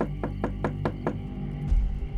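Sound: knocking on a door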